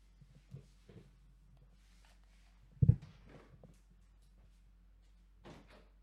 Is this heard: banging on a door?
yes